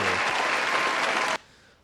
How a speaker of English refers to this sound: Let me get a round of applause for that